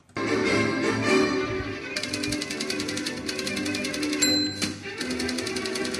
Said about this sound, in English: I got to get one of those typewriters. I bet they've got one.